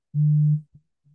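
A steady electronic phone tone hums loudly for about half a second, then cuts off, followed by two shorter, fainter blips of the same pitch. No voices are present.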